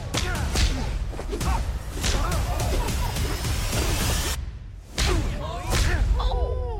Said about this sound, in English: I just slapped you. Are you all right?